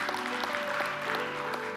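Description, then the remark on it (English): Soft, polite golf clapping from a group, a steady patter of light claps with no cheering, over a faint sustained tone. “I love a golf clap.”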